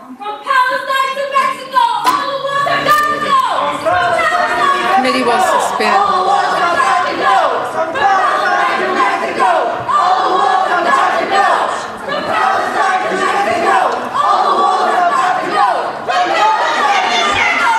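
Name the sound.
protesters shouting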